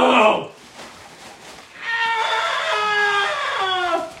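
A person screams into two balloons, making a muffled, squawking wail: a short harsh burst, a brief lull, then a long sustained high-pitched cry that wavers and drops at the end.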